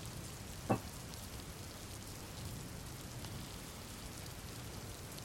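Steady rain falling, a soft, even hiss with no one speaking, broken once near the start by a single sharp tap or drip.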